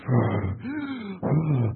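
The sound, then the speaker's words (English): A voice imitates labored, heavy breathing at high altitude: three strained, groaning breaths in quick succession, each voiced with a rising and falling moan, fairly loud. “And the altitude is so high, and your breathing is like,”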